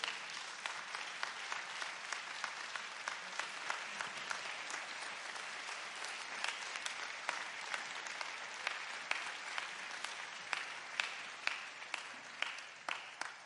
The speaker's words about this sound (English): Bless the Lord. Let's give the Lord another hand clap for this awesome pastor. Amen.